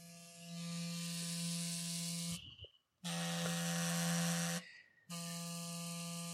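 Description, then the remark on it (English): A toy RC car, held by a microphone and not on the ground, buzzes loudly in three steady bursts with a low, constant pitch and harsh whining overtones, separated by two short pauses. No voices. “I was really excited about this RC car that's here, which I just want to put this by the microphone. Listen to how loud this thing is.”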